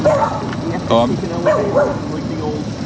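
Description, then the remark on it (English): Several dogs bark and yip in short, sharp bursts over steady outdoor background noise, with a few calls overlapping near the middle. “Ooh, there are dogs barking over there.”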